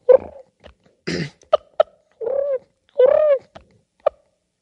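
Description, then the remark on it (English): A person imitates a turkey purr: a few short, rolling, trilled calls with a wavering pitch, broken up by sharp clicks and quiet pauses. No one speaks. “Do that turkey purr again.”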